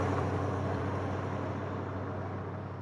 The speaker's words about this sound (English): Oh, it might have just been a car passing by.